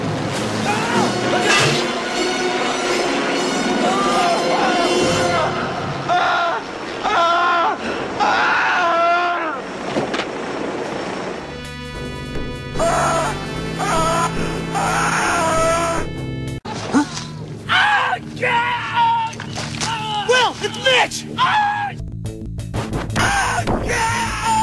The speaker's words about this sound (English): there's some sound bites from Conan that they lifted to put in that video game for all the screaming and stuff